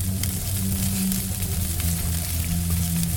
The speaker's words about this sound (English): Flames licked the bark of trees that were alive with anguish and struggle